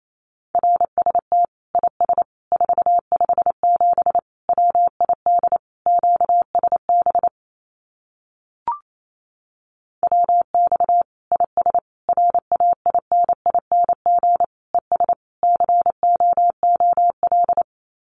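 Fast Morse code at about 28 words per minute sending common amateur radio QSO phrases: a steady, mid-pitched tone keyed in rapid dots and dashes, in two long runs separated by a short pause with a single click.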